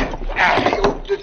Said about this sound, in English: It should not take long unless these boards are spiked to the rafters. Do not believe they are. Madre mía, the noise of that nail coming out will wake the whole town.